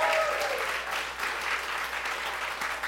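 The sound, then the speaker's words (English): A church crowd at Victory Church applauds steadily, a dense wash of many hands clapping at a fairly even level throughout, with a faint tonal ring at the start and no speech. “Clap it up for them.”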